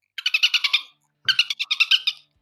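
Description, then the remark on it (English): A dolphin whistling in two quick bursts of rapid, high-pitched chirping squeaks, each lasting under a second with a short gap between. Fairly loud, with no talking. “It's only a bloody dolphin, isn't it?”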